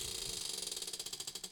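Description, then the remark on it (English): A prize wheel spins with a rapid run of ratcheting clicks that start as a fast blur and grow more distinct and evenly spaced as it slows, bright and clattery with no voices. “All right, spin two more.”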